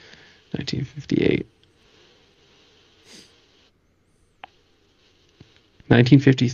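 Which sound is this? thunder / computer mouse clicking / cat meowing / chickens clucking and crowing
computer mouse clicking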